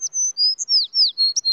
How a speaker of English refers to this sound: Little Bird tweeted her agreement.